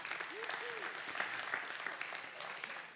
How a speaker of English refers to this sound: Just give yourself a round of applause.